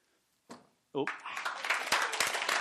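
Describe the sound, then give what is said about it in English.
A short vocal burst, then an audience breaks into steady, fairly loud clapping that swells and keeps going, with voices mixed in under the applause, as the audience claps to vote on who will win a race. “Clap if you honestly, who you think?”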